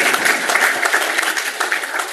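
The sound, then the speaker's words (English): An audience applauds with a dense, steady clatter of many hands clapping, fairly loud and even throughout the short burst, with no voices on top. “We've also seen a 12% increase in college enrollment rates, which is awesome as well and worth applauding on.”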